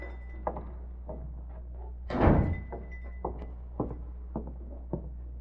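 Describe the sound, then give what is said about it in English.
A front door opens and shuts with a solid thunk in the middle as someone comes in, surrounded by softer scattered clicks and knocks, with a low steady hum beneath. “Uh-oh, somebody coming in the front door.”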